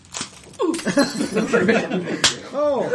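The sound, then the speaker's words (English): Sharp, slapping punch impacts from a Western-style bar fight sound effect land amid a scuffle of grunting voices, with one sudden loud crack near the end followed by a wavering vocal cry. “Do you want to borrow the bar fights and sort of Western sort of sound effects CD?”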